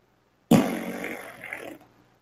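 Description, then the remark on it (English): A single fart sound effect, named lawnmower, bursts in abruptly, a low, buzzy rasp that holds for about a second before sputtering and trailing off, with no talking. “The sound effect is a lawnmower and I was expecting a lawnmower, not a fart named lawnmower.”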